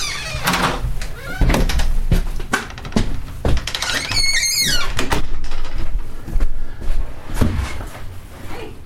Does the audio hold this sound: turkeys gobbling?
no